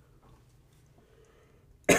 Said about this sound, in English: Oh, man. Again, I don't feel sick. I just started coughing. I don't know why.